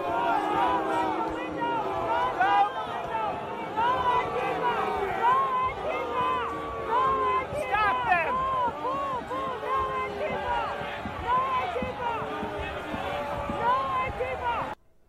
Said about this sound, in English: And you can hear Trump supporters booing and yelling at a man who was breaking out of a window. And you can see others trying to physically stop him.